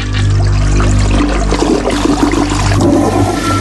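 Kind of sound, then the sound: sound effect, toilet flush sound effect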